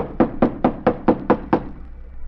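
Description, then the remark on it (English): Seven quick, evenly paced, loud knocks on the stage door of an old, boarded-up theater, reached from an alley, followed by a brief quiet stretch with faint background noise. “So I just ankled around to the alley and tried the stage door.”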